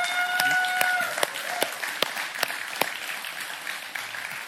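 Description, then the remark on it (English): A crowd applauds steadily throughout to show appreciation for moms on Mother's Day, a dense wash of many hands clapping with a few sharper, louder claps standing out, plus a brief high whistle-like tone near the start. “So let's just put our hands together and show some appreciation for our moms today.”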